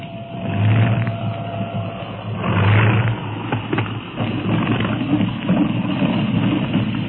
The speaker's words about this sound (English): They probably think a lunatic is flying this plane. Hold tight. I'm setting her down.